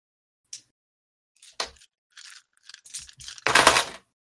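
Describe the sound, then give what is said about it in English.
Physical dice are rolled for an ASMR demonstration, rattling and clattering: a couple of sharp isolated clicks, then a run of scattered rattling taps building to a loud, dense crunchy tumble near the end. No one speaks. “I'm going to take some physical dice out, and I'm going to roll them.”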